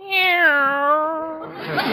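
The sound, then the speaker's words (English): A cat named Minerva lets out a single long, drawn-out meow, clear, its pitch sliding gently downward before a short burst of rustling noise at the end. “Meow. There you are.”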